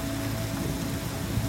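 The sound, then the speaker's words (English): Heavy warm rain pours down in a steady, unbroken hiss, with a low rumble underneath and no voices. The downpour stays even and constant throughout. “But it's a warm rain.”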